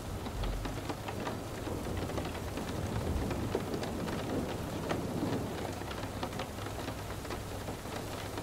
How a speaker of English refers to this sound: As you listen to the rain falling down onto various surfaces, the occasional roll of thunder and a gentle breeze begin to fill the scene.